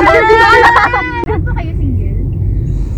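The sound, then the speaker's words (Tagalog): Steady low rumble of heavy, congested road traffic along EDSA on a payday Thursday, a dense continuous drone of engines, with a person's voice over it for the first second before the traffic carries on alone. “Nandito po tayo ngayon sa haba ng EDSA. Napakasigip po ng dali ng traffic ko dahil payday at Thursday.”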